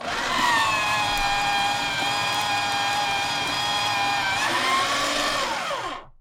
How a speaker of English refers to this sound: And this shredder has a bunch of blades in it, and it shreds it into little pieces of paper like this, and no one can ever read the secret of how to make a wooden vacuum cleaner again.